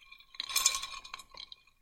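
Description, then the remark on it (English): Glasses of a cocktail made with vodka, elderflower liqueur, apple juice and tonic water clink together in a quick toast: a bright ringing tap followed by a couple of lighter chinks and a soft scrape, fairly quiet with no talking. “Let's do it. Cheers,”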